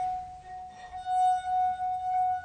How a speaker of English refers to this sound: this is one of those well-known party tricks where you play the wine glass